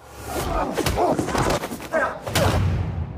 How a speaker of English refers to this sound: The pacing, it's like already fast for any fight sequences normally, but the trailer makes it more apparent with like the booms they add in for the anytime some kind of like hard effect hits in.